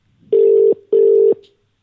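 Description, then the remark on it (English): An unanswered phone call's ringback tone: two steady, loud electronic buzzes in quick succession, each lasting under half a second with a short pause between, and no voices. “Is there someone else in mind to call?”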